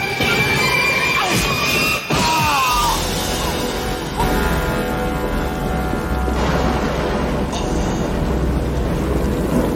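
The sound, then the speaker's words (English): A chaotic, loud struggle aboard a burning boat: heavy thuds and crashes break through a constant roar of engine and rushing noise, with muffled voices and strained cries mixed into the din. “Why would you fight on a boat that's on fire?”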